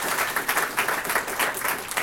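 A steady burst of applause from an audience, many hands clapping densely and evenly for a couple of seconds at moderate volume, with no talking over it.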